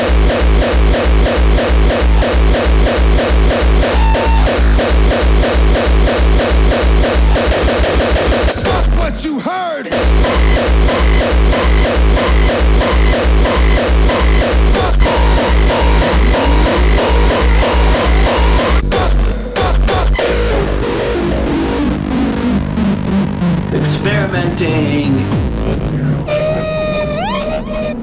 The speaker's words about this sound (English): You need it to sound like this. Does your drum machine sound like this? The amount of distortion. Don't get it twisted.